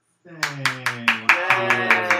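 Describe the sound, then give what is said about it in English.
Applause in a steady, even rhythm: about eight sharp claps spaced evenly over two seconds, riding on top of a sustained, humming voice-like tone underneath. “Big round of applause.”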